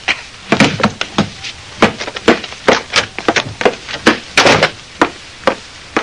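A rapid, irregular flurry of sharp, hard thumps and smacks, like punches landing in a scuffle, with no voices, over about six seconds, as a man is punched and knocked out.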